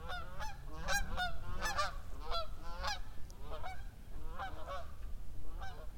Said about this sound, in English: And here come the geese again. They're going to fly right over me, right?